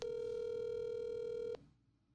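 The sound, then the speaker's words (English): A single steady telephone tone of an outgoing call to reach someone's mom sounds loud and clear for about a second and a half, then cuts off abruptly into near silence. No voices are heard. “We've talked to brothers, we've talked about dads and great grandpas, and now we're trying to get a mom on the phone.”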